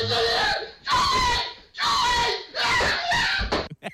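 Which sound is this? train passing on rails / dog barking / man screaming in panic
man screaming in panic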